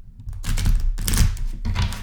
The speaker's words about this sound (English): So I shuffle up the cards. Shuffle them up. Okay. Shuffling these cards.